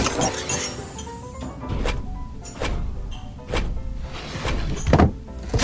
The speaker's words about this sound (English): The saloon doors are open.